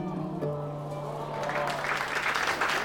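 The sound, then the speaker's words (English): A low, steady hum gives way to a crowd's enthusiastic applause in the hall of Sorrow's Edge, dense clapping that swells from about halfway through and stays loud to the end. “Enthused applause filled the soot-pocketed hall of Sorrow's Edge.”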